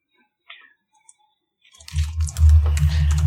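A few light clicks, then Fudge dice are rolled for a tabletop role-playing game in a continuous clatter that rattles on for over a second with a low rumbling undertone, no voices present.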